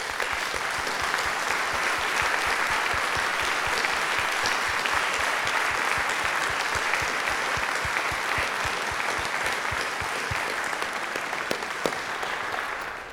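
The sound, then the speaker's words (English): A church audience claps steadily and enthusiastically for about thirteen seconds, a dense, sustained wash of applause that holds its energy before tapering at the very end. “And I just want to take a moment, and I just want us to applaud not ourselves, but the beauty of what this church is right now.”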